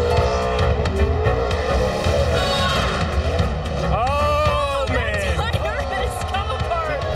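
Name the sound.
car doing a burnout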